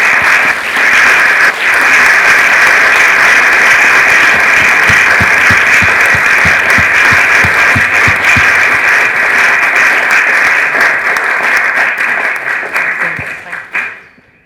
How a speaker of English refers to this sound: I'm so sorry, everybody, we've just run out of time. Thank you so, so much. Can we just give a round of applause then